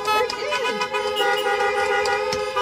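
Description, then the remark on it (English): Several car horns honk together as amens in a loud, sustained chorus, their overlapping blares running steadily through the whole moment, with faint voices mixed in underneath. “Now, when we get back inside some month from now, I want to hear lots of amens where the horn honk can just amen me.”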